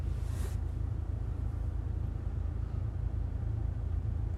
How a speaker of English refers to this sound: Well, we might be stuck in traffic for a minute.